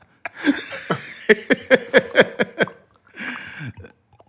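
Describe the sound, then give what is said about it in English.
Water sloshes and gurgles inside a World War II metal canteen right next to the microphone, a burst of quick rhythmic splashes followed by a longer rolling slosh, with no one talking. “That motherfucker, you can hear every liquid ounce of water in that thing next to the microphone.”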